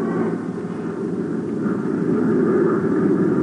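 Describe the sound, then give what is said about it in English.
A steady, heavy engine drone of a transatlantic plane, heard from inside the pilot's compartment, a low rumbling hum that holds constant without pause, loud. “Ken Thurston, acting as co-pilot, is aboard a transatlantic plane chartered by three international atomic scientists, all under equal suspicion of having stolen the missing plans.”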